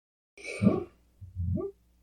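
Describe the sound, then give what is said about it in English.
A sleeping dog named Bubba, dreaming, gives two soft, muffled woofs in a row, the first breathy and huffing, the second a lower, rounder little bark, both quiet with no talking. “He's having a dream and doing little woofs.”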